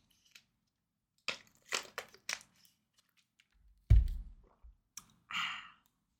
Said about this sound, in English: I'm going to take a swig of water first.